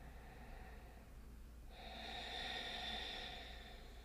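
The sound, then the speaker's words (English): A slow, deep breath during a meditation breathing exercise rushes audibly through the nose or mouth, swelling for about a second and a half before easing off, fairly soft against an otherwise quiet background with no talking. “And by doing this breath work, this breathing part of meditation, you activate your parasympathetic nervous system, as we mentioned earlier.”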